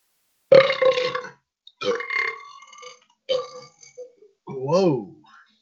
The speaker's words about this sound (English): And I'll explain that belch in just a few minutes. Sorry about that.